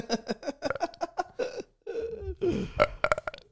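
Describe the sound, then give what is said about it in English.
A long, drawn-out burp forced up on purpose, loud, with croaky gulping bursts before and after a brief pause, followed by a few short chuckles. “Yeah, I can burp on purpose.”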